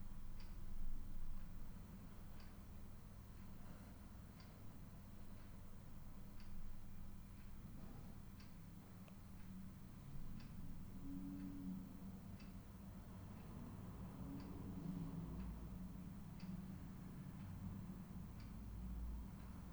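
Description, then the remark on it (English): A clock ticks softly and steadily, each faint click evenly spaced, over a low background hum with no voices. “What's happening is we're becoming experts in letting go of the last thought, letting go of the last emotion, letting go of the last sensation, the last breath, the last clock tick, the last word.”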